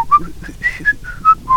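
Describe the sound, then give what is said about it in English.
A person whistles a quick, bright melody of short tonal notes, rising and falling in a lively rhythm, clear with no talking. “His whistling is amazing.”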